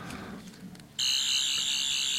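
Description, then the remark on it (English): A spring-loaded toy sonic screwdriver switches on abruptly and holds a loud, steady, high-pitched electronic buzz with a faint wavering tone, sounding alone after a brief quiet rustle. “Oh, here's my spring-loaded sonic screwdriver.”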